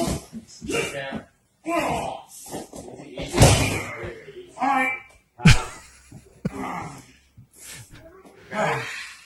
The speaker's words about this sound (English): So here he is. You're gone. You're gone. About to get body slammed.